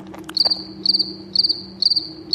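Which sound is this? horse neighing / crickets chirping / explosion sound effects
crickets chirping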